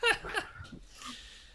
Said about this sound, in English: I got distracted because my dog is really, really interested in playing right now, so I'm gonna split my attention.